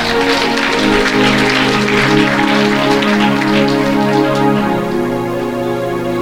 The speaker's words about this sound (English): If I were you, I would clap hands for that one.